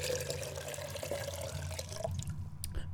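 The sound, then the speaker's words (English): Water pours steadily into a container for a few seconds, a continuous splashing trickle with a few brighter drips near the end. No voices. “Here, have some water.”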